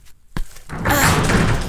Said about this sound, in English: The door closed.